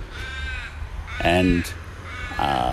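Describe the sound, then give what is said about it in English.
Harsh crow caws ring out twice, loud, each a raspy harmonic call, with a fainter bird call near the start over a steady low background rumble. “Distracted by that bird. Noisy bastard. Hang on. What is it? A crow.”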